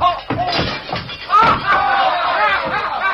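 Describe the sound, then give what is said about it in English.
Several loud crashes and thuds of furniture being busted up by a clumsy dancer ring out amid a rowdy scuffle, with men shouting and yelling over the breaking wood throughout. “You can't even dance without busting up the furniture.”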